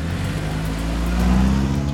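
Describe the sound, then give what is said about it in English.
A car engine hums loud with a steady low drone, its pitch rising slightly partway through as it revs up and the car drives away. No voices. “She hurried out the patio door, raced to her car, and drove away.”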